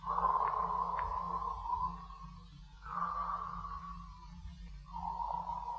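Slow, deep breathing of a man asleep in bed in Pimlico, England, three long whooshing breaths in a steady rhythm, each lasting a couple of seconds, over a faint low hum with no talking.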